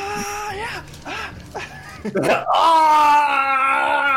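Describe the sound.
A man imitates the battle cry of the character Steel Scar shouting as he runs into combat in a dice-rolling game, starting with a few short, strained vocal bursts before rising into a loud, sustained shout that carries to the end.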